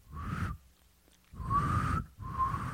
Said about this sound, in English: And I can't whistle, so it's just like a woo woo. What is it? What does it sound like? Woo woo woo.